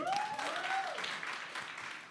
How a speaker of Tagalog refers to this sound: Isa uling malakas sa palakpak for Clark.